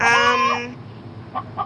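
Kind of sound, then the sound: bird, chicken clucking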